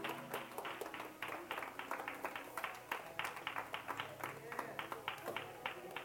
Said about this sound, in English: Give God a hand clap if you can.